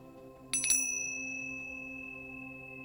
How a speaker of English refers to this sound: We'll begin and end by bringing awareness to the sound of a chime.